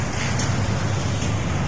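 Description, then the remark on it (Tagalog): A garbage truck driving by, its engine a steady, loud low rumble with a constant wash of road noise and no break or change over the short stretch. No one speaks. “Yan na yung truck.”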